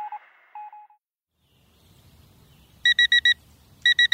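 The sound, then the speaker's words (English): A smartphone alarm beeps in rapid bursts of four short, bright tones, the pattern repeating after a brief pause, loud over a faint low rumble. “For many people, every morning, their smartphone alarm rings.”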